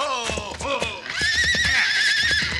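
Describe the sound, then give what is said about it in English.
A horse whinnies loudly, a long wavering neigh that rises and quivers, with low thudding hoofbeats running underneath, as the horse is being headed off. “Head off that horse,”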